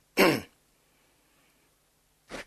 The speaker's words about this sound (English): How does one cough when one wears this? Excuse me.